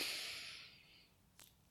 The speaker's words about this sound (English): All right, so let's do it. Breathing in.